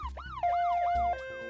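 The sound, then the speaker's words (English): An emergency vehicle siren in yelp mode: loud, rapid rising-and-falling wails repeating about four times a second over a low rumble, before shifting to a steadier, higher tone near the end. “Before an intersection or among tall buildings, the yelp mode, which has a faster beat, is used because it bounces off the surrounding walls better.”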